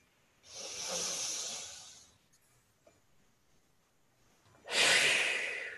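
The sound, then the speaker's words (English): A person demonstrates a slow, deep breath: a long airy inhale, a pause of near-silence, then a strong, rushing exhale. No talking. “That would be a deep breath.”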